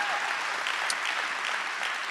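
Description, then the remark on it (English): An audience at Community Christian Church claps steadily for their pastor, a dense, continuous patter of many hands at a moderate, even level with no pauses and no voices over it. “You can go ahead and applaud her.”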